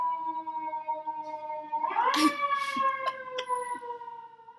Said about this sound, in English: Oh, there's a siren. Yeah. Sorry, fam.